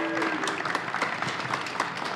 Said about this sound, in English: Mr. Jim Walmsley, please, big round of applause for the champ.